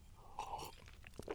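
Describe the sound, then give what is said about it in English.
A quiet sip of bourbon from a glass: a brief slurping draw followed by a few small wet mouth clicks and a swallow, with no talking. “It's just me and a big old bottle of bourbon. Sounds kind of bad, but it's actually quite nice. I'm not going to lie. So anyway, I'm going to take a sip.”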